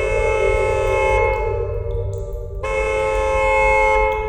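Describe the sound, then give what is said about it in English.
The horn of a woman's car blares in one long, steady blast lasting about four seconds, its tone briefly dulling midway before returning full strength, over a low rumbling hum. No one speaks. “She stopped at the sound of her car's horn.”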